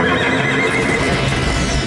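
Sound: horse neighing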